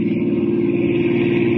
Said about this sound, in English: As our story continues today, we find them in a small car racing toward a distant airport, hoping against hope to get there in time. Listen.